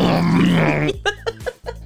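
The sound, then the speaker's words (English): A person's voice imitates the sound of lightning during a flight in a lightning storm: a loud, gravelly, low rumbling growl held for about a second, then broken into three or four short, sharp bursts. “Try to give us a sound that you think it would sound like.”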